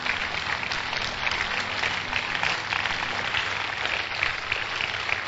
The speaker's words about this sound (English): Clap your hands for this beautiful story. Clap your hands.